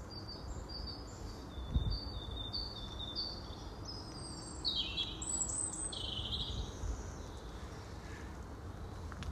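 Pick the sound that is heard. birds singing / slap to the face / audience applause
birds singing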